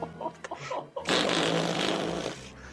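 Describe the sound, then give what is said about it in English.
A long, loud, buzzy fart lasting over a second, preceded by brief quieter sputters and fading out at the end. “So, we've been eating stone fruit for a week, but someone here is farting.”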